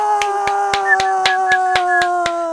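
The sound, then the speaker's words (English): A steady run of about ten sharp, evenly spaced claps, like one person applauding in rhythm, over a constant tonal hum that continues underneath. “There you go, some applause.”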